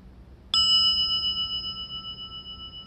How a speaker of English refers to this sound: There must be a connection, the striker and the bell.